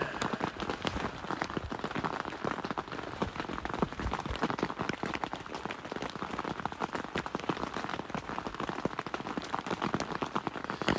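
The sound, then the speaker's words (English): Steady rain patters on a surface beneath many massive trees, a dense, continuous crackle of countless drops, with no pauses or voices for the whole stretch. “Listening to the rain.”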